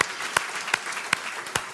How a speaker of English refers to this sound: Let me hear you applaud the Lord today. Come on, let me hear you.